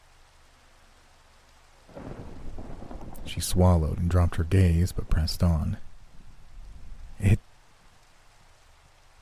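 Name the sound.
rain and thunder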